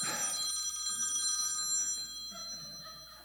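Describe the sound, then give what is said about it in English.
A cell phone rings with a bright, high electronic trill, sustained tones shimmering, loud at first and gradually fading over a few seconds, during a sermon. “Please take this moment to silence all cell phone devices. And, your brother is calling, by the way.”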